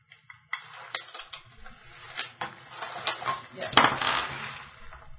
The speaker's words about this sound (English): I'm sure this is just delightful for the recording, having this bag of being sorted through. So close to the mic.